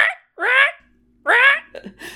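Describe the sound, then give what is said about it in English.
A voice imitates a crow's caw twice, giving two harsh, raspy, nasal squawks with a pause between them, followed by brief softer vocal sounds. “I'm doing the crow noise, that's all.”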